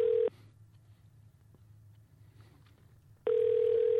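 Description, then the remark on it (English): A telephone ringback tone heard over the line as a call is patched through to the Anthropologie store at Fashion Square: a steady buzzy ring cuts off, followed by about three seconds of quiet line hum before the next ring begins. “Here, I'll patch you in like I did last time.”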